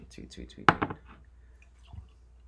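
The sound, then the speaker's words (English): Whisky is poured into a glass in a few quick gurgling glugs lasting under a second, followed by a soft knock of the glass being set down. “Solid. Nice pour.”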